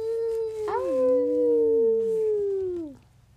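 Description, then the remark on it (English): A child's voice imitates a howl at the moon: one long, loud, wavering 'ooo' lasting about three seconds, rising at the start and sliding down as it fades. “Can you howl at the moon,”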